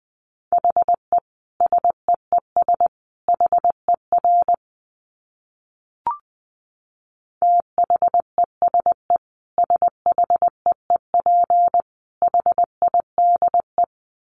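Morse code at about 20 words per minute: a steady mid-pitched beep keyed in rapid groups of dots and dashes, pausing midway around a single soft pop before resuming.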